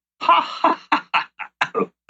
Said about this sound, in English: Cough, snort. Snort, exactly.